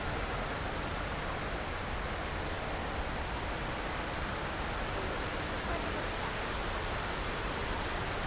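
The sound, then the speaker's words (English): Steady, unbroken rush of water pouring down a 9/11 memorial waterfall, a dense hiss-like roar that holds at an even, moderate level throughout without pauses or distinct splashes. “We'll make our way over to the other waterfall.”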